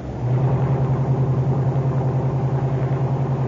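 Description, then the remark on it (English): The engine of Car 91 hums steadily as it drives to the corner of 3rd and Williams, a low, continuous rumble with a slight pulsing throb and no voices over it. “Throw in your clutch and coast up to the other side of the street. There. Cut your motor and lights.”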